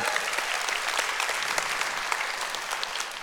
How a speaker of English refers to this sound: Give your pastors a round of applause.